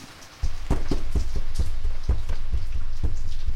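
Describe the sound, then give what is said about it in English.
Steady rain pours down outdoors in windy weather, a dense hiss broken by irregular heavy drops pattering on a surface, loud throughout over a low rumbling undertone, with no voices. “And the next thing I know, I'm like outside here in the rain, hanging for dear life to this tombstone.”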